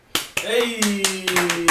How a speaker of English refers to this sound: Hey! Clap, clap, clap, clap, clap, clap, clap, clap, clap.